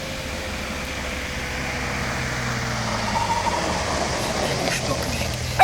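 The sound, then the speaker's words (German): A white BMW coupé approaches with a steady, rumbling engine and road noise that slowly grows louder, its pitch dipping slightly as it draws near. “Psst, da kommt ein Wagen.”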